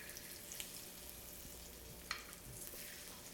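Tofu sizzles steadily as it fries in a frying pan, its second side browning after being flipped, a constant hiss of crackling oil with a few sharper pops, with no talking.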